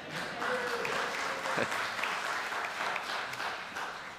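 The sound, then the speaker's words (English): A crowd at a church applauds steadily, many hands clapping in a dense, continuous patter for a few seconds, with a faint murmur of voices underneath. “I see someone clapping there who had an 8-0 birthday last Sunday.”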